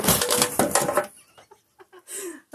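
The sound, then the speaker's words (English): A stool gives way under a person during an interview with a loud burst of cracking and clattering for about a second, then a few scattered knocks and bumps, followed by a short voiced sound. “My chair just broke.”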